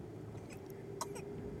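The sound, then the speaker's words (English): A few small, quick throat-clearing coughs from someone with little bubbles in his throat, short sputtering bursts spaced close together, heard faintly over a steady low engine hum like the inside of a moving car. “Like he just gets a little bubbles in his throat, you True.”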